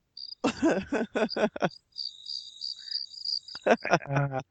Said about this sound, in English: Where's the crickets? It just got quiet. It got quiet and then it sunk in.